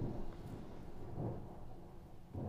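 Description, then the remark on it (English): Low, rolling thunder rumbles continuously, swelling and fading in broad waves with a soft hiss of rain beneath it and no voices. “Fitting to have the thunder in the background.”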